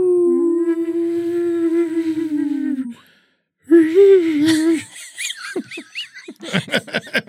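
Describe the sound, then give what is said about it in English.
A person imitates whale calls with long, wavering vocal moans and high whistled glides, pausing once before a burst of breathy, warbling squeals and rapid chirps, loud. “You got to try to whistle a little bit.”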